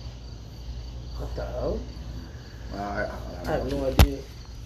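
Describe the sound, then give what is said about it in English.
A cricket chirps steadily in the background, a thin high trill running under muffled voices, with a sharp click near the end. “Where is it? Oh, Cricket.”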